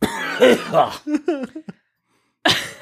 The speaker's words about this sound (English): I realize this is a skit. We didn't have to cough, but it's better for effect.